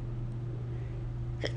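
A single quick, short sneeze bursts out near the end, over a steady low electrical hum with no talking.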